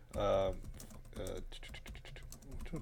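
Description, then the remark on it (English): Someone pounds hard on a computer keyboard, a fast clatter of heavy keystrokes, with a couple of brief voice sounds near the start. “I hear somebody pounding on the keyboard.”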